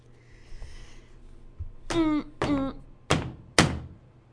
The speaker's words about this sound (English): I slammed the book down. Haven't slammed a book down in quite some time. And it feels good.